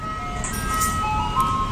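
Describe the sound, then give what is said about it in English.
A 1917 Columbia Records recording of the tune Turkey in the Straw, originally titled Old Zip Coon, plays as a thin, tinny melody of steady single notes, like an ice cream truck jingle, over a low background rumble. No one speaks. “Guys, the original name of this song was Old Zip Coon.”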